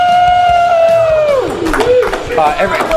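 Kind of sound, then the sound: crowd, audience cheering and clapping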